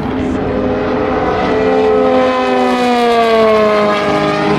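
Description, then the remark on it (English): LMP prototype race cars, including a G-Drive car, pass by at speed on a race track. Their loud, high-pitched engine whine sustains throughout and slides steadily downward in pitch as they go past, with no talking. “A G drive and another LMP.”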